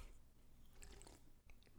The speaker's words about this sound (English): a little sip of my drink. Sip okay.